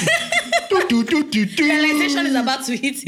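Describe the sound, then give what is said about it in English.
A voice mimics the dramatic drum beat heard in a Hollywood fight scene with a rhythmic run of short, punchy sung syllables, about eight beats in steady succession, before breaking into quick speech with a hint of laughter. “This is the fight in Hollywood where you hear the drum.”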